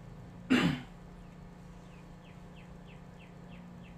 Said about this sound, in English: You hear that bird? It's chirping in. He's listening. He wants some feed.